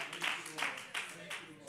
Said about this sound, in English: One more hand clap of praise today as you're seated.